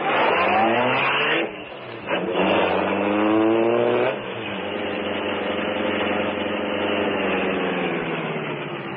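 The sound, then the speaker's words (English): The Green Hornet's sleek black car revs loudly, dips briefly, then roars again and settles into a steady drone as it pulls away. No one speaks. “Is the car ready, Cato?”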